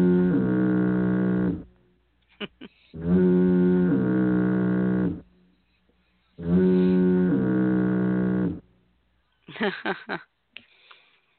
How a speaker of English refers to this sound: It's time for the triple. I believe it deserves the triple foghorn.